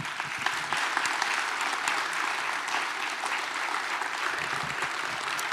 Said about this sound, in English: And while you're clapping, I want to make sure we clap to say thanks